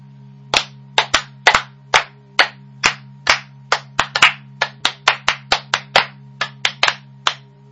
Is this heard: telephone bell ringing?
no